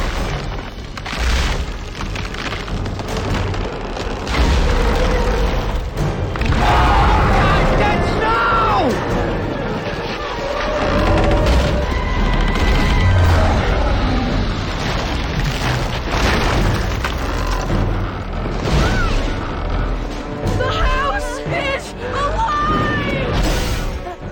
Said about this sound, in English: Then they set up speakers in a barn and loudly played monstrous noises. The sounds shook the structure, distorting and bouncing around.